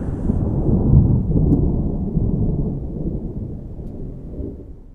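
A deep, rolling rumble of thunder during a thunderstorm fills the scene, loud and sustained at first, then slowly fading away over several seconds with no voices present.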